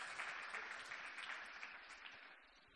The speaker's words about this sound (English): Come on, give the Lord a clap offering where you are.